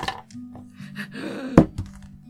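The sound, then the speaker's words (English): A new die, rolled for a strength saving throw in a tabletop game, hits a tabletop with one sharp, solid thunk, followed by a couple of lighter taps as it settles, while voices murmur in the background. “This new dice sucks! It was rolling good yesterday.”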